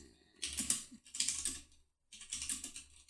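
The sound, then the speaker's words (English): Rapid, clattering keystrokes on a computer keyboard while typing a tweet come in three quick bursts with a brief pause between the second and third, the clicks bright and steady with no voices present. “And also, I'm tweeting at him right now.”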